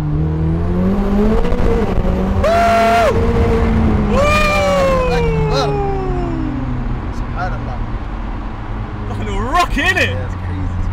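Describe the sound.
A sports car engine in track mode revs hard as the car drives through a tunnel, pitch sweeping up and down in echoing bursts with crackling pops, loud, while voices talk beneath it.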